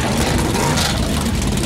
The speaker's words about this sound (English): Everybody is ready here in Daytona. The engines come to life, 40 and all.